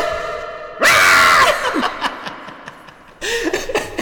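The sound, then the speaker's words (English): A person lets out a loud, sustained scream that trails off into strained vocal sounds, then a second shorter scream bursts out near the end. “What's that therapy thing where you just scream?”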